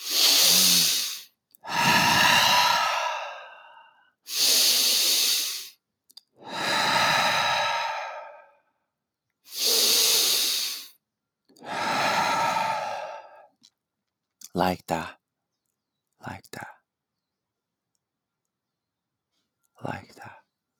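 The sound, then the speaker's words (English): Three slow, deep breaths, each a long airy inhale followed by a heavy exhale, then a few faint brief mouth sounds near the end. “Each and every single time the past visits your mind is a feedback for you to breathe deeply because you're not breathing deep enough.”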